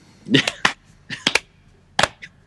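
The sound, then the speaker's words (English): Seven or so sharp, dry hand claps arrive in loose, uneven clusters with short pauses between them, a sarcastic slow clap with no talking. “So, good job. Slow clap.”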